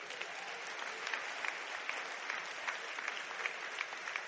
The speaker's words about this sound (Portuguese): Tem que aplaudir um texto desse.